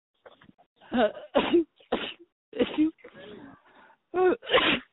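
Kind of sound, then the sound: human body sound, a small sneeze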